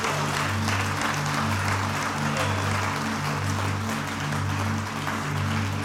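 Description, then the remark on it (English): An audience claps their hands steadily in praise to God, a dense continuous patter of many hands that holds loud for several seconds over sustained low droning tones underneath. “Would you clap your hands and praise Him for His goodness?”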